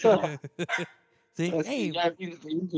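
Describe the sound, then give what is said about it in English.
A dog barks: a few quick, sharp barks, a brief pause, then a longer run of higher, wavering yelps and barks. “Your dog barked? Yeah, he barked right now.”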